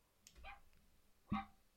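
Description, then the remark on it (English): A small dog's bark is played by pressing a button: two yaps, a softer bark followed about a second later by a sharper, louder one, with no talking. “They got a button so you can hear the bark.”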